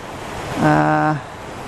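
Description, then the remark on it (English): A steady wash of rushing water from a waterfall fills the background, broad and constant, with a brief humming, voice-like tone rising over it near the middle. “I'm losing some of the light on the hill, but I forgive myself for the waterfall.”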